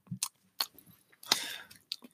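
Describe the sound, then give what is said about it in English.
A voice mimics chewing on a gun with a few wet, crunchy mouth clicks and smacks in an irregular rhythm, fairly quiet, ending in a longer rustling crunch. “Just sitting there actually chewing on the gun.”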